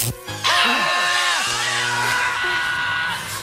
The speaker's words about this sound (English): There is a funny bit where … screams